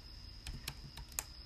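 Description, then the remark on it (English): Four or five crisp, quiet mouse clicks at an uneven pace, each a short sharp tap, clicking on an electric object marked "do not punch", over a faint steady high-pitched electronic whine and low background hum. No one speaks. “I'm clicking it.”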